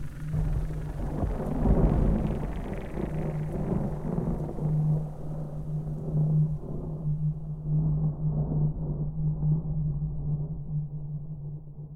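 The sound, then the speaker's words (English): Deep, rolling thunder swells loudly in the first few seconds, then settles into a long, steady rumble with a low droning undertone that carries on to the end. “And on dark and stormy nights, its grave howls can still be heard echoing through the hills of Kingsport, Tennessee, amidst the lightning and thunder.”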